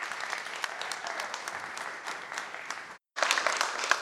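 Steady applause from an audience at a Christ Community church service, welcoming a speaker in the morning: a dense wash of many hands clapping that holds for a few seconds, briefly cuts out, then resumes with some sharper individual claps.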